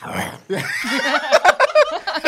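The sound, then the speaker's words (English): A person imitates the little growl a TikTok creator does after talking about anime: a breathy rasp, then a wavering, guttural voiced rumble with snorting, pig-like breaks, short and fairly loud. “I forget his username, but he's the one that does the little growl after talking about anime.”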